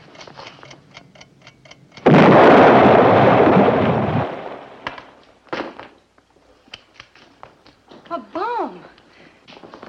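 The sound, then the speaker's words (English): A sudden, loud explosion sound effect bursts in and rumbles for about two seconds before cutting off, with sharp clicking sounds before it and people talking afterward. “I heard an explosion.”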